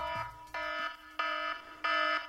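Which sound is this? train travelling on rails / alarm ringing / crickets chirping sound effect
alarm ringing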